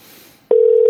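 A quiet hiss gives way to a loud, steady electronic phone tone starting halfway through, like a dial or call tone, with a click at the onset and another near the end, as a show host phones a guest.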